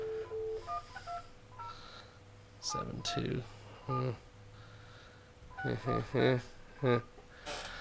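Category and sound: signal or alarm, telephone keypad dialing tones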